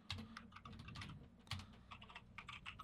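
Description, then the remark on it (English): Someone types something in on a computer keyboard: rapid, uneven, steady clicking of keys, with short bursts and brief pauses between keystrokes. No voices. “No, let me type something in.”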